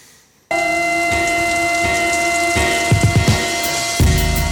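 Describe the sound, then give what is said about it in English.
Rain drops on the intro of a music project, falling in a steady, dense patter that begins abruptly after a brief silence, with soft sustained tones underneath and a few heavier splashes toward the end. “Especially because it's like the rain like, drops.”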